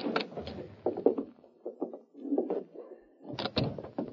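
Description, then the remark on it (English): An office door is unlocked and opened: a run of quiet clicks and rattles from the lock and latch, then a heavier clunk as the door swings open. No voices. “Open your door and go right in.”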